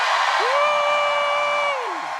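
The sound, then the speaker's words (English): A church audience lets out one long joyful shout on a count of three, a loud, sustained "whoa" that rises, holds steady for over a second, then trails down in pitch as the voices fade. “Why don't we just do a joyful shout on three?”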